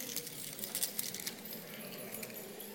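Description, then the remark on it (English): House keys jingle in a continuous flurry of bright metallic clinks and jangles, dense and overlapping throughout, fairly soft, with no talking. “Can you get your house keys out? Give them a jingle.”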